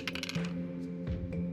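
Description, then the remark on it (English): Dice rattle and tumble briefly across a hard tabletop, rolled for a charisma check and landing on a 6, a quick clatter that settles fast, with a steady low hum underneath and no voices. “He rolled a 6 for our audio listeners.”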